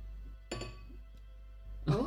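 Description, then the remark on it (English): A quick, bright clink of glasses rings out once, like a toast, then fades into quiet before a voice briefly starts at the end. “Cheers, basically.”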